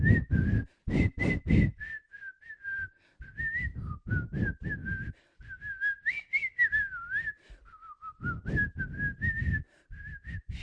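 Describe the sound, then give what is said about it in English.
A woman whistles a wavering melody for about ten seconds, the pitch sliding up and down between short phrases, loud, with a few breathy bursts at the start and no talking. “Can she whistle? Yes. Any tune you name?”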